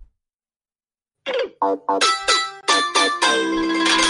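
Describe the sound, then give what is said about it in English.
A short electronic jingle plays from a phone after a moment of silence: several quick, bright chime-like notes that build into a sustained, ringing final chord. No one talks over it. “Hang on, I found my jingle and I want to play it.”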